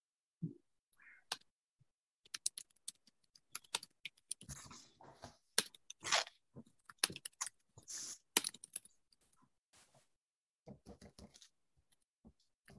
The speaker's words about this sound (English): It's always stressful when you're typing and someone's waiting for you, right?